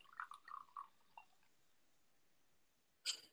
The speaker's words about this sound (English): Okay. So pouring the white.